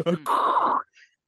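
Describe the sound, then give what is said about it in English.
A voice imitates Darth Vader's heavy, rasping respirator-style breathing: one loud, hissing breath of about half a second, followed by a faint trailing wheeze and then silence. “That's me breathing.”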